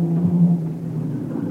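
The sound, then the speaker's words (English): A car engine drones steadily, its low hum swelling briefly as it revs and pulls away, speeding through the small village of Puerto Montego, holding a constant loud rumble for the short stretch with no voices. “I gun through the town, then ditch my car at the far end behind one of the buildings.”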